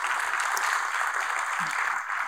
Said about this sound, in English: Before we move on further, let's give them a round of applause for reading. Thank you.